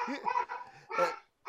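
A dog lets out a couple of drawn-out, whining barks, followed by a brief pause and one short, sharp yip at the end.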